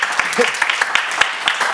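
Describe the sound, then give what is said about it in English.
A crowd breaks into applause, dense clapping mixed with scattered cheers and voices, fairly loud and steady across the short stretch. “If that doesn't get a cheer from you guys, I don't know what we're doing here.”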